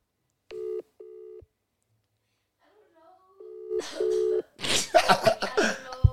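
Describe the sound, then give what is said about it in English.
A phone ringback tone from calling a female friend sounds in two double-pulse rings, clear and steady, with a pause between them; voices and rustling noise follow right after the second ring. “We call again.”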